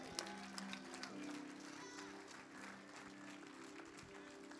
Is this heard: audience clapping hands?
yes